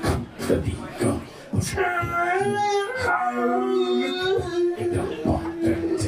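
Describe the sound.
People imitate a howling dog with their voices: long, wavering, overlapping howls that rise and dip in pitch for several seconds, after a few short vocal bursts at the start.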